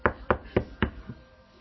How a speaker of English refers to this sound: Now we're going to return to Festo's house. There's a knock on your door.